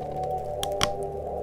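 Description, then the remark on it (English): A nut is crushed in a hand: two sharp, brittle snaps about a fifth of a second apart, heard over a steady low hum with no voices. “They can crush a ship as easily as I crush this nut.”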